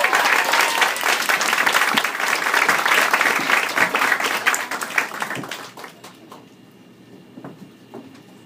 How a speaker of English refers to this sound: And she's just such a talented writer, so please give her a warm round of applause